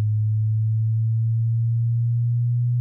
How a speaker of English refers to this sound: So it's going up through the hertz. So it's 42, 43 going up. Going, 60 hertz. See how the sine wave slows down and goes back? Yeah. And now it gets to 80.